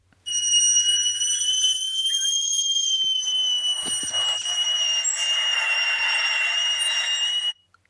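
A played recording of a man's loud, high-pitched scream held for about seven seconds, shrill and steady with a harsh, piercing edge, ending abruptly. No one speaks over it.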